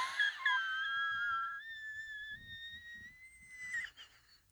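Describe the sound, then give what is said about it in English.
A long, thin, whistling wheeze holds a steady high pitch that creeps slightly upward for about four seconds, with faint low murmuring underneath before it fades. “You hear that wheeze?”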